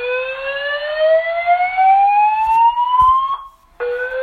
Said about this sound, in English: Yeah, man. Good luck sleeping through that. Oh, man. You know, it's funny. You hear that go off and you think, ah, come on. It's nothing, right? False alarm, false alarm. But it kept going off. It kept going off for several minutes.